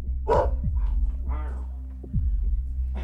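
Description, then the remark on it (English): A caged bulldog lets out a couple of gruff barks about a second apart over a steady low rumbling hum, the barks moderately loud. “So I opted to just stand there and listen to his caged bulldog bark at me.”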